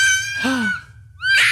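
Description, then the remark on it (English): Two shrill, piercing screams like a child's cry, the first long and wavering, the second starting abruptly after a short pause, loud against a low background hum, coming from outside in the middle of the night. “So I'm trying to stop the dog from barking so I can figure out which child, if my child... is screaming.”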